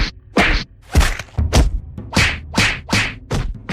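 A fist repeatedly punching a tree: about eight dull, woody thwacks in a steady rhythm, loud, with a short swishy tail after each hit and no talking.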